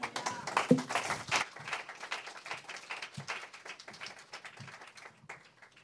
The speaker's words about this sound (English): Podemos darle otro aplauso al Señor Jesucristo. Give another clap offering to the Lord.